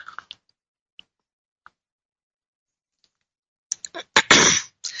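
After a near-silent stretch with a few tiny clicks, a loud slurping sip of espresso from a cup bursts out for about a second, followed by a quick swallow-like click.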